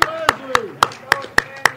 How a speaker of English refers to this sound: Guys, the silent auction is all about us. It's us contributing and us bidding. So give yourselves a big, big, big round of applause.